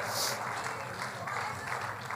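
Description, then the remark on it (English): An audience clapping their hands in worship to praise God, a dense, steady wash of many claps running throughout at moderate volume, with faint crowd voices mixed underneath. “Somebody clap your hands to Him and give Him praise right now.”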